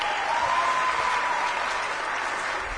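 A crowd claps steadily in a dense, continuous round of applause that holds loud throughout, with a faint thin tone briefly audible beneath it.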